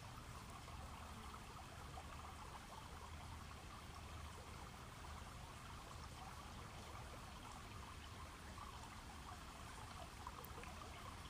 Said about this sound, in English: And as we sit next to this river with our feet in the water, we look around us and see birds flying around.